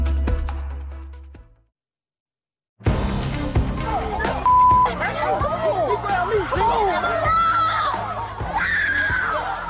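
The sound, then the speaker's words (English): After a brief silence, a large stadium crowd in Birmingham erupts into loud, overlapping panicked screams and agitated shouting after police tased and arrested a high school band director, a chaotic wall of voices that stays intense and sustained throughout. “Those are panicked screams after Birmingham police tased and arrested a high school band director.”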